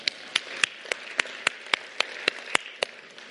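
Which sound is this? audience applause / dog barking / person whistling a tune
audience applause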